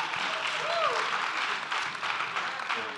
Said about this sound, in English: Clap if you agree with me. Clap if that's hot.